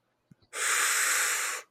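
A single deep, deliberate breath taken as a breathing break, a loud, airy rush lasting about a second after a couple of soft mouth clicks, with no talking.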